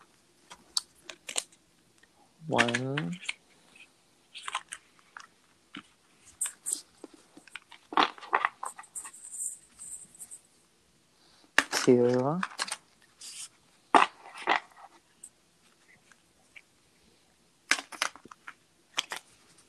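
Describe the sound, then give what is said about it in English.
A Spirit Animal Oracle card deck by Colette Baron-Reed is shuffled three times in several bursts of quick, papery flicks and clicks, with two brief voiced sounds breaking in between the shuffles. “Okay, so I'm going to shuffle 3 times. The deck I'm reading from is the Spirit Animal Oracle, Colette Baron Reed.”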